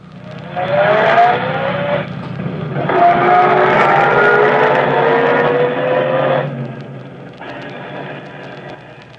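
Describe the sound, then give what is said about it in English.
A car's engine revs and pulls away as the traffic light turns green, its pitch rising through a couple of gear changes as the car accelerates, then settles into a steady, fairly loud drone before fading slightly. “I said I'll wait in the car. Go ahead, the light's green.”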